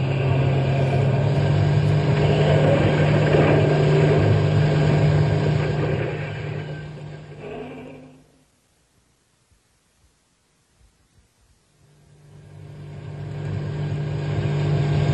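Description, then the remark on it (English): A loud, steady truck engine rumbles with a broad rushing noise as the truck is driven as fast as it will go to get out of a park, cuts out abruptly to near silence for a few seconds, then swells back up to full volume. “Step on the gas. We'll get out of the park”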